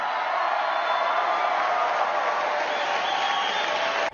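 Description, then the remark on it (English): A standing ovation for President Trump's line on patriotic education: sustained applause from a large crowd, a dense steady wash of clapping that holds at an even, loud level throughout before cutting off abruptly at the end. “And I intentionally had Anna put that applause on there because, I mean, it went on and on and on.”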